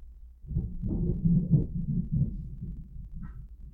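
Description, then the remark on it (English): Thunder from a passing thunderstorm booms in a deep, low rumble that rolls on for a few seconds, swelling and then slowly fading, with no voices over it. “I know it's like, listeners, if you're listening, there's a thunderstorm going through.”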